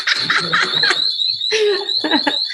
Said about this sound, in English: What is that, an alarm? Yes. They're in a cool little Airbnb, but okay. I was like, is that a doorbell? Because that's an obnoxious doorbell.